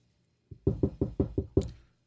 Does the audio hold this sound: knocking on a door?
yes